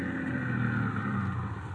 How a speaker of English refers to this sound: But then the time came, and he was pulling his car up in front of the house where he was to meet the man with a foreign accent.